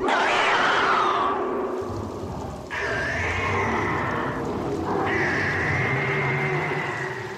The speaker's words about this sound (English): And then you hear the monster screaming in the distance. And it sounds pretty terrifying. Yeah. It sounds like a whole bunch of fucking deadite cats. Just all fucking fighting and shooting each other in the face with fucking nail guns.